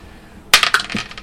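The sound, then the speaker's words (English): A quick clatter of small hard objects as a player scoops up and puts away their dice, a burst of sharp clicks and rattles lasting under a second, fairly loud, with no voices. “As I put all my dice away.”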